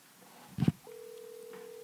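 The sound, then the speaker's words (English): A telephone handset clunks, then a steady, unbroken dial tone hums on at moderate level and holds to the end, with no one speaking, as a phone call is placed to professional angler Bill Lowen. “Let's see if we can get Mr. Lowen on the phone.”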